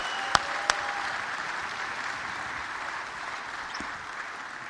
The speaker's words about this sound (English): So I want you to welcome him. Give him a big Chapel Hill round of applause as he comes to preach to us.